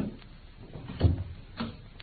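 A few muffled, uneven footfalls approach, with a heavier wooden thump partway through like a door being pushed open, all dull-sounding, with no one speaking.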